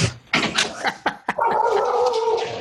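A speaker's pet dog barks excitedly several times in quick succession, then breaks into a long, sustained, loud whine or howl.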